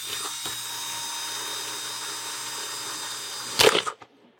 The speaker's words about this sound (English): So we decide, here's what I'm going to do. I'm going to drill some holes in this stupid thing. Kind of tired of it being full all the time. So there we go.